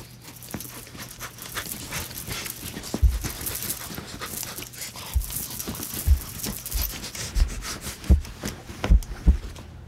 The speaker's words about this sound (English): The dog attacked us. Look. Hey, see, you hear it.